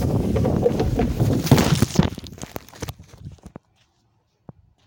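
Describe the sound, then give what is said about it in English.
Someone slides down a slide that is hollow inside, reached by an old wooden ladder, and wet at the bottom: a loud rushing, scraping rumble for about two seconds, then a scatter of thumps and knocks that fade into silence, with one sharp tap near the end. “And yeah, you're about to hear me go down the slide. It's wet at the bottom, but here we go.”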